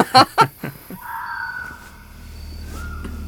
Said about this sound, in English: That's just an owl.